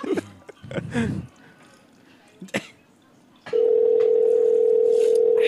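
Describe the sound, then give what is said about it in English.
A steady, loud telephone dial tone while calling someone back begins midway and holds unbroken to the end, following a few seconds of muffled handling noises and a short burst of movement. “Yeah, we're calling this bitch back.”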